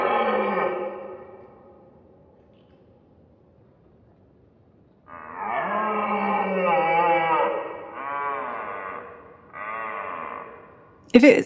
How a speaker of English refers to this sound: So what is it? What's the answer? It's a red deer.